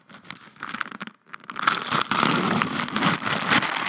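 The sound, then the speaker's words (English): Plastic shrink wrap being ripped open on a Golem Arcana digitally enhanced miniatures board game box: a few quick crinkles and tears, then a loud, sustained crackling rip of film with no talking. “So now we're getting the first rip.”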